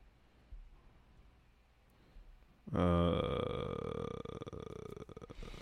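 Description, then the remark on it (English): After a quiet stretch, a loud, low, wet fart erupts and rumbles on for about three seconds, buzzing and sputtering before trailing off. “The flatulence of gastric execution, wet fart.”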